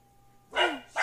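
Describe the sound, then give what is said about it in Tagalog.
Dogs bark loudly and excitedly, one sharp, drawn-out bark followed quickly by a second shorter one, with a faint steady hum in the background. “Wait lang, nagwawala yung mga aso namin.”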